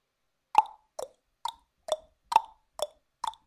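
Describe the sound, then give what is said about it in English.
A voice imitates a horse trotting over Discord as a clue in a word-guessing game, with seven hollow tongue clops, evenly spaced about twice a second, moderately loud and mid-pitched, with no talking over them. “I'll make a noise. Hopefully this will come across over Discord.”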